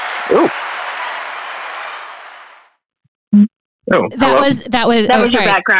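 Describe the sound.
A soft wash of applause fills the first couple of seconds and gradually fades out, followed by a brief pause, a short thump, and then a person talking.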